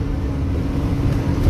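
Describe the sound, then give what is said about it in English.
A steady, loud low rumble of a bus engine and road noise from inside the bus as it travels past Papa John's at Brislington, Bristol, continuous and unchanging throughout, with no voices. “Meanwhile, back on the bus.”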